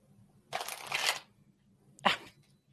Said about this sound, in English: So I'm going to hold that. I'm going to shuffle 3 times.